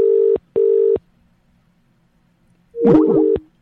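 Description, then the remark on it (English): A phone's call-disconnected tone after the red button is pressed by mistake instead of the green one: two steady, fairly loud electronic beeps in quick succession, then after a brief silence a short warbling, chirpy burst of tones. No one speaks. “I hit the red button. I should have hit the green one.”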